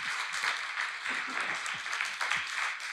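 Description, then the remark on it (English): A large church audience claps steadily and continuously, a dense wash of many hands applauding together at moderate volume, with faint voices mixed into the noise. “And so I applaud you and thank God for you guys.”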